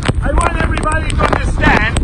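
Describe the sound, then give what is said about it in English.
Heavy storm wind roars and buffets the microphone with a loud, constant low rumble, nearly drowning out a man's voice that speaks in bursts underneath, in a video he posted from the heart of the storm. “He's often in the heart of the storm, such the heart of it, you can barely hear his voice battered by wind in this video he posted.”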